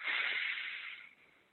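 A deep, airy inhale drawn through the nose during a guided breathing exercise, fairly loud, rushing steadily for about a second before tapering off into quiet.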